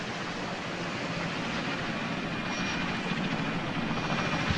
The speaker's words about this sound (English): Yeah, but one of these is just the helicopter to begin with.